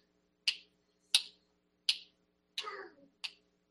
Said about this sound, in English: Because you clap on 1 and 3, that's the right thing to do, right? If you're going to clap and keep the beat, you keep the beat the way the human mind keeps the beat, on 1.